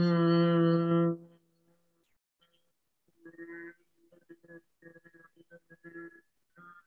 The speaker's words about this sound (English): But if you take a deep breath in, and then when you exhale, hum your breath out. So it goes like this. You take a deep breath in and then hum out.